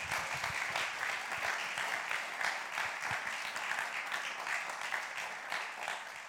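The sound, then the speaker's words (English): Steady applause from an audience for a speaker at a talk, a dense, even patter of many hands clapping at once that holds at a fairly constant loudness for several seconds, with no voices over it. “Yeah, clap.”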